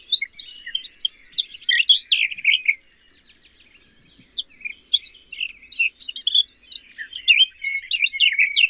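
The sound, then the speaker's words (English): Garden warbler and blackcap songs: fast, scratchy, warbling phrases, loud, pouring out almost continuously with one brief pause partway through. No one speaks. “And you know that when you've reached the level of identifying garden warbler and blackcap, you're joining the ranks of the experienced birdwatchers.”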